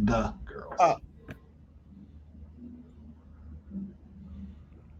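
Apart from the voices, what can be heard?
sneeze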